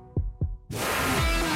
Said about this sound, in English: We work in sync to make sure your heart beats in regular rhythm.